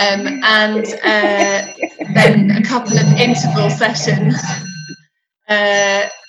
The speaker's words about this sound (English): Excuse the grandfather clock.